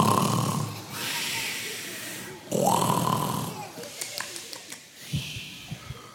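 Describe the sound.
A voice imitates turtles snoring: two long, rasping snore sounds, each rising into a whistly tone, followed by a few soft clicks and snorts. Fairly loud.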